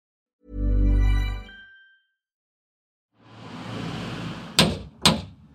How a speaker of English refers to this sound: Hefty door knocker. I've travelled over to West London this morning to visit the home of my FT colleague,